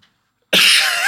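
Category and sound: human body sound, sneeze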